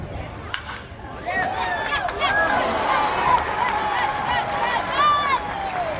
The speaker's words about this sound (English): What a great sound. Ball explodes off the bat. Sounds like a gunshot. Oh, baby. That's fun. Dude, it really does sound like a gunshot.